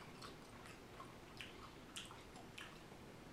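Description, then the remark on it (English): Wet chewing of sticky, sugar-coated sour candy straws, with repeated soft smacking and squishing sounds at an uneven rhythm over quiet background hiss, no talking. “We first chew it and it's covered in sugar.”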